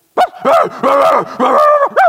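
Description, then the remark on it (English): A person's voice imitates the family's dogs reacting to the doorbell ringing, letting out a rapid string of about five loud, pitch-swooping yelps and howls, some short and some drawn out, with no other talk. “When the doorbell rings, invariably, this is what happens. Our dogs do this.”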